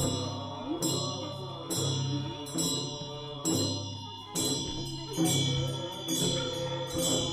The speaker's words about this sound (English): I remember hearing chanting voices coming out of a lodge alongside the trail.